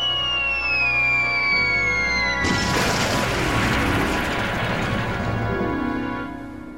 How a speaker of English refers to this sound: The trucks splintered underneath him as he fell down the lower terrace, but they fortunately broke his fall.